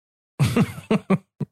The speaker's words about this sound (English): Then he coughs like he just hit a fucking bong.